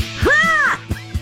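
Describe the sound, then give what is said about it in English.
A toy bald eagle named Squawky, squeezed and tucked behind its tail feather, lets out one loud, harsh, rising-and-falling squawk that sounds like a caw. Two soft clicks follow it, and no one is speaking. “Where are you putting your finger exactly to make him make that noise?”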